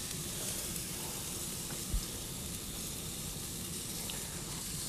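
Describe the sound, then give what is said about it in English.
Chicken sizzles steadily on a grill, a continuous crackling hiss of frying meat at moderate volume, with one brief soft pop partway through and no talking. “I think, can you hear that sizzle of me grilling up some chicken here?”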